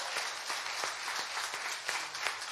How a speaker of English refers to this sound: Now, if you are saved, you better start clapping, because God did some big things.